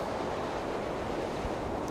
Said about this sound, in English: Ernest peers over the hood of the car as more wind whips around them. Yeah, it's not great.